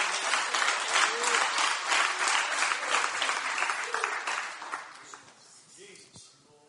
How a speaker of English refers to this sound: Oh, come on, clap your hands.